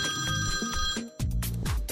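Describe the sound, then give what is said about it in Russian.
A telephone rings with a steady electronic warble, two bursts separated by a brief gap, fairly loud with no voices over it. “И тут зазвонил телефон.”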